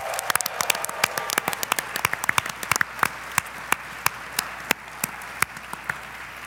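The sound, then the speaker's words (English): A live audience at the PAX Unplugged convention in Philadelphia applauds with a burst of dense, sharp clapping that gradually thins out into scattered individual claps, moderately loud, with no voices. “Give yourselves a round of applause, everybody!”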